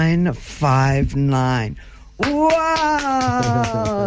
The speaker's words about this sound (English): Can you hear? There's like 25 of us clapping, but it's only me.